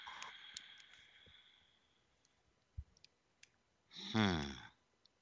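A handful of sharp, irregular pen clicks sound faintly over a quiet background, followed near the end by a brief, louder tonal burst with a rising pitch.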